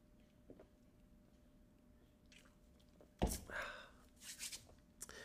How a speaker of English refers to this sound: Let me take a sip of beer. Hold on.